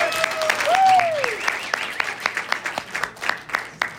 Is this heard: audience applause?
yes